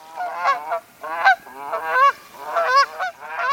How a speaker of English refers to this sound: Imagine this Canada goose paddling along on a cold winter day.